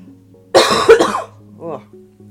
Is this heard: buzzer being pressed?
no